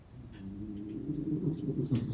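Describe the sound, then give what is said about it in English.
A dog snores with a low, steady, rumbling drone that wavers and swells slightly as it breathes, carrying on continuously with no voices over it. “Hi everyone, I've got the loudest snoring dog next to me, but I didn't wake him because he looks so peaceful.”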